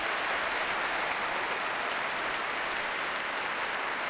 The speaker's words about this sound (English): Well, ladies and gentlemen, a superb debate on a complicated, important topic, and we couldn't have done it without these four gentlemen. So a big round of applause for our debaters. Bravo.